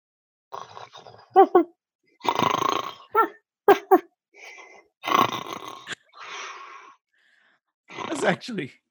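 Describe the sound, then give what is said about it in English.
A person imitates a sleeping dog with a series of snorting, snuffling snore sounds and short wheezy huffs, fairly loud, in irregular bursts with brief pauses between them. “Can we get some dog sleeping sound effects?”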